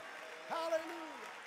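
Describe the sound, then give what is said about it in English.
An audience claps hands in praise to the Lord, a steady, dense wash of applause, while a voice rises and calls out over the top, its pitch sliding upward then falling. “Come on, clap your hands and lift up a shout of praise to the Lord.”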